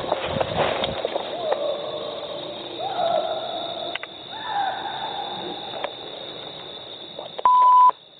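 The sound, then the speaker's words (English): A single loud, steady bleep near the end cuts sharply over the talk, about half a second long, a censor tone masking the F word. Indistinct background voices and rustling come before it. “And the beeping was, I cut out the F word.”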